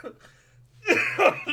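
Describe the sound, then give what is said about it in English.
A few harsh, strained coughing bursts from laughing hard, loud and rough, ending with a gagging sound, after a quieter breathy start with low hum in the background. “I just laughed and coughed so hard that I gagged.”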